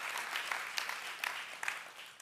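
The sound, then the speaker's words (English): An audience applauds with dense, steady clapping at a moderate level, scattered sharper claps standing out now and then, with no one speaking. “And we could clap for it, but God wants us to live like it.”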